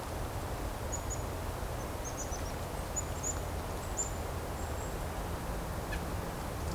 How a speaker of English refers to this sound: There's a nuthatch nearby coming down a tree. Coming closer to me now.